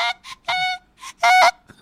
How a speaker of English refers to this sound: No. I don't know why that made me so sad. It's a dying goose sound.